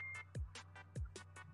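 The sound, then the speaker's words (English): A phone rings with a music-style ringtone: a steady electronic beat of deep thumping kicks and crisp hissy hits repeating in a quick rhythm, fairly loud and with no one talking over it. “It's my phone! The fuck is that?”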